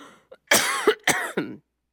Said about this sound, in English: Excuse me, I'm going to cough for a moment.